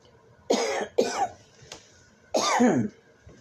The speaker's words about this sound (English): Sorry for the cough, everyone. I have got a cold that I'm dealing with. Of course, when I'm talking, it causes me to cough more.